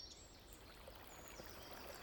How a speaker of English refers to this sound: The sound of a babbling brook filled Mr. Collins' ears